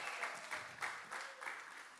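A crowd claps and cheers steadily, a dense wash of hand claps with bright, hissy texture and a few louder swells, sustained at an even volume with no talking over it.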